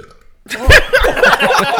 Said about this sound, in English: Oh. I'm keeping that in there. You guys are gonna listen to that burp in high quality. Whoa! I was keeping that in for a while.